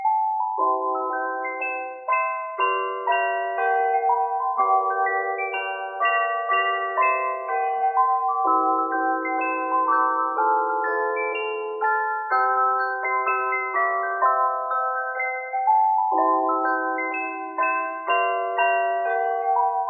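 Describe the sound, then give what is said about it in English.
A cheerful Christmas tune rings out on a set of chimes, bright bell-like notes with lingering overtones following one another in a steady rhythm, sustained and fairly loud, with no voices over it. “It's a bit of a tune that I'll play on my chimes that I've got with me here.”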